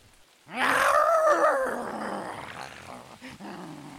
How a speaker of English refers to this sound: In the other room, Blaid howls in pain.